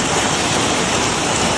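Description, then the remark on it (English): Heavy rain from a nasty storm on a Thursday evening in February in Rock County pours down in a dense, steady roar, loud, with no breaks or voices across the short stretch. “This, after that nasty storm rolled through Thursday evening, sounded quite different last night.”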